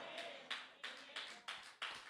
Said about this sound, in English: A couple of hand claps.